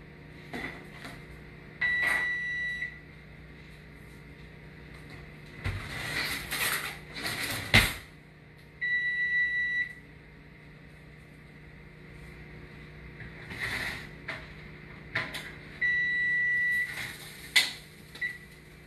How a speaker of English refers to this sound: Okay, so my broiler's beeping.